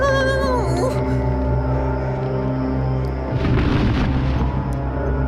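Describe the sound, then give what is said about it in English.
A video game monster roar from the creature Zod: loud and sustained, with wavering, gliding tones early on, then a rough, noisy surge that swells up partway through and holds to the end. No one talks. “That, like, that roar? I don't know. It's a little wimpy, a little high pitched.”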